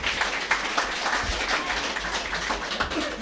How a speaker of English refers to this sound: How lucky am I to work with this fella? Yeah? Wow. A show of applause.